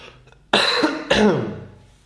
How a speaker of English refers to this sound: I'm going to cough.